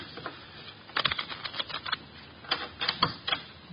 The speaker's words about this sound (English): The cards are shuffled. I'll place them in the center of the table.